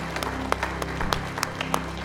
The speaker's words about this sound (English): If you're not ashamed to be called a son or a daughter of God, would you just give him a hand clap of praise in this room together? Come on, thank the Lord.